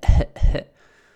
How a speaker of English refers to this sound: Still not 100%. Really knocked me around badly. Still got a cough.